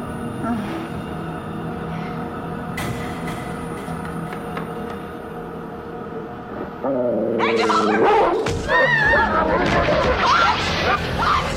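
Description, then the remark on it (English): A steady low mechanical hum of a generator starting back up runs for several seconds in a compound, then a dog erupts into loud, frantic barking and snarling as it attacks a person, the aggressive noise continuing in ragged bursts to the end. “that is the point where Mulder is attacked by the same dog that we saw in the cold, cold open”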